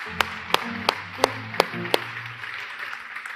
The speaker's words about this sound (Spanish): Los viejos aplaudan en este momento. Yo aplaudo también.